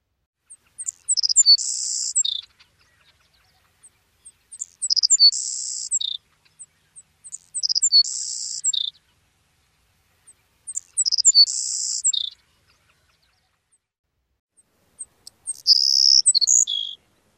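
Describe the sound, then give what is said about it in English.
A sparrow sings the same high song five times at steady intervals, each beginning with thin ticking notes mixed with short buzzes, swelling into a long insect-like buzz and ending with one or two short buzzes, typically one higher and one lower, with silence between. “It starts with high tisks that mix with short buzzes, accumulates in a long buzz, ends with one to two short buzzes, typically one higher and one lower.”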